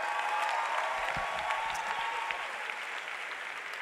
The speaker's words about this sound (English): Clap for the dancing stars.